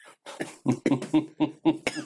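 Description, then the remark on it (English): A fit of harsh coughing, about seven sharp coughs in quick succession, fairly evenly spaced and loud, with no talking over them. “No, I'm coughing.”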